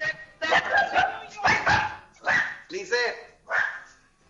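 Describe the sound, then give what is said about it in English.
A dog barks repeatedly in short, loud bursts, about five barks spaced roughly a second apart, heard over the phone line of a listener calling in from Brooklyn, New York, slightly muffled. “The dog is saying, say the truth now.”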